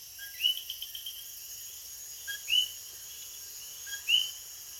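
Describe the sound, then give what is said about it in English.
Coquí frogs in Las Marias, Puerto Rico give three clear two-note calls at steady intervals, each a short low note rising to a higher chirp, over a constant hiss of night insects with no voices. “We travel to Las Marias, Puerto Rico now with Coquí frogs.”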